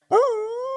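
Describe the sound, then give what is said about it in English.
A dog named Roo, in a studio, lets out a single loud howl that swoops upward in pitch and then holds a steady, sustained tone, with no voices around it. “Thanks, Rod, for having Roo and I in the studio.”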